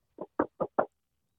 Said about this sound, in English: Look, let me knock on wood.